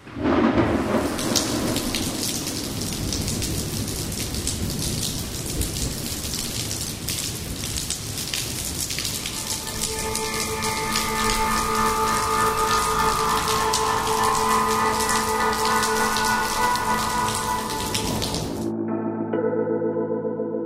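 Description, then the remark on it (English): Heavy, steady rain from a terrible rainstorm pours while deep thunder rumbles and crashes, heard over a phone. Partway through, a low, steady droning hum rises beneath the downpour, and the storm cuts off abruptly near the end. “The phone only answered with the sounds of rain.”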